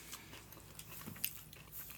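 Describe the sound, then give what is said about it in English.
Quiet crunching as someone chews a crisp cinnamon snack, with a few sharper bites breaking through a soft, steady mastication over two seconds; no talking. “I'm gonna put more in my mouth and creep out hope.”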